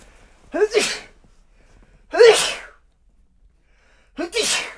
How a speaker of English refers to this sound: I'm feeling a sneeze coming on. Okay. Let it rip.